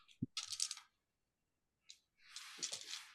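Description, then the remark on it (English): Dice clatter onto a hard table in two separate rolls, a sharp rattling burst, a pause, then another tumbling clatter, fairly loud with no voices; the dice are rolled during a tabletop role-playing game, including a stress roll. “Too many dice. Four successes, one stress. I rolled a stress, and the stress roll was...”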